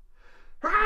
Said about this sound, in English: Gesundheit.